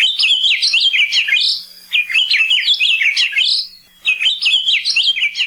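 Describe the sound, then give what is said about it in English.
An ʻAkiapōlāʻau, a large, bright yellow honeycreeper, sings three bright, warbling phrases in quick succession, each a rapid run of rising and falling notes, clear with brief pauses between them. “ʻAkiapōlāʻau are large, bright yellow honeycreepers that act like woodpeckers.”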